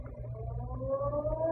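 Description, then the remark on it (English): The Ferry Building siren in downtown San Francisco sounds 8 o'clock in the morning, a steady siren tone that wails and slowly climbs in pitch, carried over a low, rumbling background, with no voices present. “The next morning, just as the ferry building siren was announcing 8 o'clock to downtown San Francisco, I got Rembrandt on the phone.”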